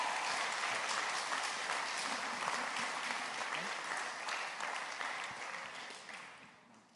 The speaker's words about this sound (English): Give him a round of applause for getting out. That was impressive.